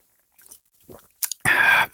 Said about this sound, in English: So let me get a little bit of a sip here.